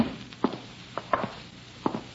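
A window blind knocks against a wall in a bedroom in a handful of irregular, hollow taps, some coming in quick pairs, with quiet gaps between them and no voices.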